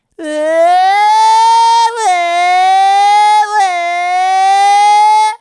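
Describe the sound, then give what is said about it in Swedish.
A voice imitates a whiny motorcycle with a loud, nasal, continuous drone that climbs in pitch, dips at two brief breaks, and rises again, like an engine revving through gears. “Men du vet såhär, har du hört en gnällig motorcykel någon gång?”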